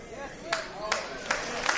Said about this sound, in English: See, they weren't ready for that. Yeah, it was a little delayed hand clap.